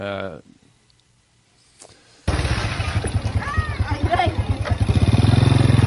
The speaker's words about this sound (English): Yeah, this is right below the mountain. Well, let's go by that. The wind is, can't hear nothing but, this is a market again.